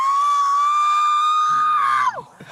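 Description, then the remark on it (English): A woman screams loudly as she is held to be searched, holding one piercing high note for about two seconds before it breaks and drops in pitch. Faint commotion stirs underneath toward the end. “Help me! Stop screaming!”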